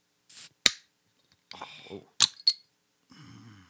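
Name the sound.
beer bottle being opened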